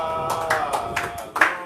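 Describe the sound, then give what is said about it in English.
A church audience claps their hands for Jesus during a sermon, in a loose, steady rhythm, several broad sharp bursts layered over a sustained tonal hum, with no one speaking. “Oh, clap your hands for Jesus.”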